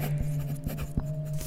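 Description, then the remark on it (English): A number two pencil scratches up and down across sketch pad paper in quick, uneven, awkward strokes as someone draws a doodle, fairly quiet, with a steady low hum underneath and no voices. “drags a number two pencil up and down the paper they are presently sullying.”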